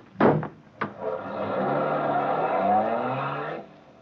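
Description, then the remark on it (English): A couple of sharp thuds, like car doors shutting, then a car engine revs up and rumbles steadily as the car pulls away, loud, ending abruptly. “Is that car there?”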